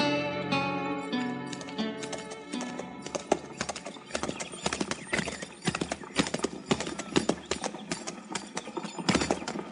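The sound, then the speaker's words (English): Horse hooves clip-clop in an irregular rhythm at a crowded hitch rack while a horse whinnies loudly near the start, its harmonic neigh ringing out before the hoofbeats continue. “Hey, Tipple, move that horse you're in over so I can get mine in there.”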